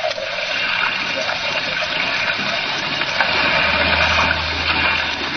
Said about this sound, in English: we approached the island in a small fishing boat